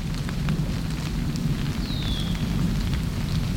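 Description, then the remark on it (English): A steady, soft patter like light rain: countless tiny caterpillar droppings (frass) falling through the trees of a neighborhood, ticking through leaves in a continuous hiss, with a faint bird chirp sliding overhead partway through. No one speaks. “It's caterpillar poop, called frass, falling through the trees.”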